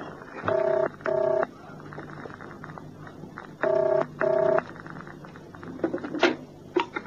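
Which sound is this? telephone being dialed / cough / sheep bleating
telephone being dialed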